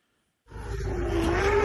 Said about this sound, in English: Okay. That's an elephant. Shit. Oh, boy. He is staring down the safari cab. Like, oh, Jeep. My God.